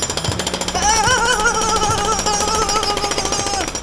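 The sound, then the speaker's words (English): A jackhammer on a construction job pounds away in a rapid, steady rattle, loud and continuous for a few seconds, with a harsh mechanical whine riding over the hammering. “Sharon goes straight for the jackhammer, a bold move for a former chef. Let's see if she can turn it on.”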